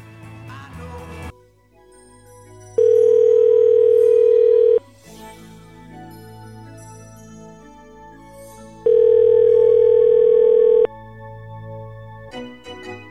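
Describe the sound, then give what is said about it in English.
A telephone dial tone sounds after a call is hung up, twice, each a loud, steady electronic hum lasting about two seconds, separated by a pause, over a quieter continuous background with no one speaking. “I'm hanging up on both of them.”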